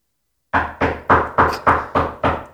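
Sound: knocking on a door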